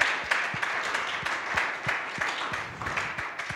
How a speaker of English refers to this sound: Why don't you give yourself a round of applause? Break the silence here.